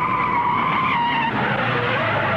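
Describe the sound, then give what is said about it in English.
Tires screech in a sustained, loud skid as a race car spins out during a car race and then recovers, the high whining squeal wavering and dipping over a steady roar of engine noise. “Graham spins,”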